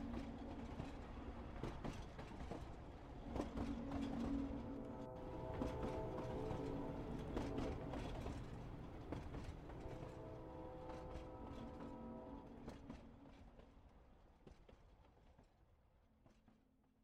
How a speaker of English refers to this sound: The train rolled on and on, and even though they'd slept through most of the night, the hypnotic sounds of the train lulled them, and they all grew heavy-headed and nodded off.